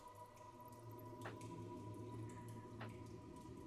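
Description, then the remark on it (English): Water trickles steadily against a low hum, with two distinct drips landing about a second and a half apart, fairly quiet. “Sun through something, the trickle of water.”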